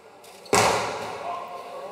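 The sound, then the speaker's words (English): A single loud, sharp hammer blow strikes a painted mural on a wall, mimicking the sound of a gunshot, followed by a lingering wash of noise and reverberation, with faint background sound beforehand. “He started to strike the mural with the hammer, mimicking the sounds of gunshots.”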